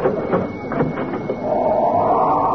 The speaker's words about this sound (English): Close that door, you're cooling off my coffee.